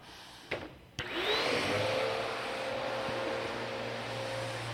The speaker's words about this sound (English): Now the vacuum is working and the platform is being cleaned, right?